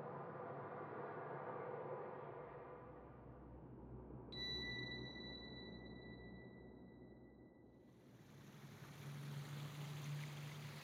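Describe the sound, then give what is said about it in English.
A small waterfall splashes and rushes steadily, with a thin, high ringing tone rising above the water for a few seconds midway through. No voices. “Look, a fairy waterfall.”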